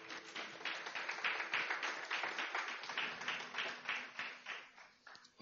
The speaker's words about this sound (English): Amen? Give God a round of applause.